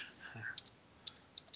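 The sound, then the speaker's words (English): A handful of light, crisp keyboard clicks spaced irregularly over a quiet background, like someone tapping keys on a computer keyboard. “Plug in the keyboard.”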